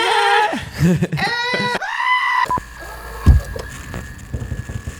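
A goat bleats loudly several times in quick succession, wavering, scream-like cries up close, followed by quieter rustling and faint background noise.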